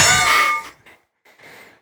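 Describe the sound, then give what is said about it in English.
A game-show buzzer bell rings out loudly with bright, metallic overtones, fading after about half a second, then two fainter, shorter ringing tones follow with no voices. “And that bell. And the other sounds that phone makes.”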